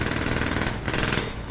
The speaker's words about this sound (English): Yeah, it's a drill. Jackhammer drill.